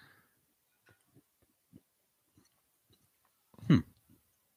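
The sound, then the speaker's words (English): A man chews a bite of caramel-topped pizza, with soft, sticky mouth sounds repeating at an uneven, slow pace and one louder smack near the end. No one speaks. “He's going to be chewing it forever.”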